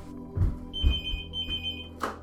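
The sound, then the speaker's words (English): A phone rings with a steady, high electronic tone that holds for over a second with a brief break, over soft low thumps and rustling handling noise. “Right, let's get my phone. I think that's probably my mum.”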